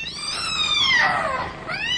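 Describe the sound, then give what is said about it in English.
A cat lets out a loud, sustained yowl as it attacks a man, its harmonic wail bending up and down before a second drawn-out cry rises at the end. Aggressive, with no speech. “The cat launched herself, not at Malcolm, but at the luckless custodian. Her eyes blazed with ferocity.”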